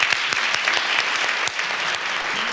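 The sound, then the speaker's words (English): A Phoenix audience applauds steadily to welcome Albert Brooks, a dense wash of many hands clapping at once with sharp individual claps popping through, loud and sustained with no pause and no talking over it. “So would you please welcome, with a big Phoenix applause, all the way from Hollywood, California, Mr.”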